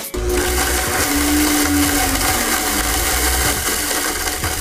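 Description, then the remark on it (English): A blender runs steadily at full power, its motor whirring loud and continuous with a churning low rumble and a faint tonal whine, pureeing for several seconds with no voices. “I'm usually sad when something gets blended.”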